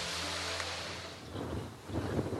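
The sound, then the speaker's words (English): Steady wind blows loud across the microphone, a broad rushing roar with low buffeting gusts, mixed with the wash of ocean surf and no voices. The wind comes in off the southern ocean. “The wind coming in, sort of front right, from the ocean, southern ocean's down there.”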